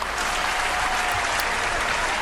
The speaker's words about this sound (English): He told me you hate the applause. Well, we did that one just for you, buddy.